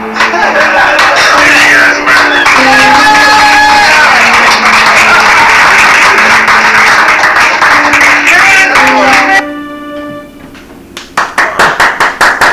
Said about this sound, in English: I feel like those claps are really loud. Take your headphones off. Nah, they weren't that bad. A few good spikes.